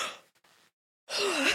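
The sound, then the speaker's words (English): A breathy yawn: a soft airy intake, a brief pause, then a long voiced exhale that rises and falls in pitch, with no speech. “Yawn break.”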